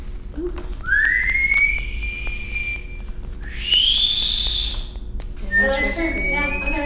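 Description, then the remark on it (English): Someone whistles through their teeth, which do not meet at the front: three sustained, piercing whistles, each sliding upward and holding, the middle one highest, fairly loud, with a voice briefly murmuring under the last. “I can whistle higher frequencies a lot of the time with my teeth than I can with my lips.”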